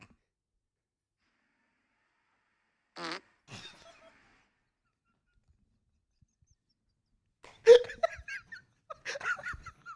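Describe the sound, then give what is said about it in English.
A recorded fart plays back: a short, buzzy, vibrating rip after a stretch of silence, a smaller puff, then a louder cluster of sputtering bursts mixed with snickering near the end. “Now, I'm playing the fart.”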